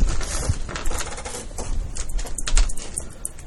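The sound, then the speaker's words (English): Dice rattle and clatter in a rapid, continuous stream of hard little clicks for a few seconds, with no one speaking. “You're gonna roll some dice.”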